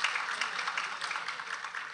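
A church audience claps together to congratulate themselves, a dense, steady wash of many overlapping hand claps, holding an even loudness throughout with no voices standing out.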